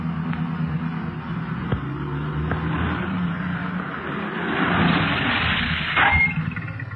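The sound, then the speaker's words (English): A police car's engine rumbles steadily, swelling in a rough, growling surge midway before easing back as the vehicle pulls up as it approaches a hill. No one speaks. “Meanwhile, the boys in the police cars approach the hill that was indicated on the map.”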